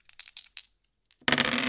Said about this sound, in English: So let's roll the dice.